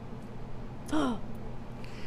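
A single short, sharp intake of breath, an excited gasp with a rising vocal edge in reaction to a question, against quiet room noise.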